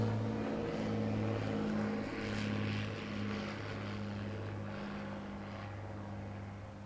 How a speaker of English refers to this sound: So I'm sitting in my front lawn. We're going to let the airplane pass.